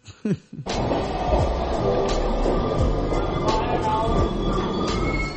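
A subway train rumbles loudly and steadily, with high metallic wheel squeals and periodic clacks over the continuous roar, after a brief burst of noise at the start.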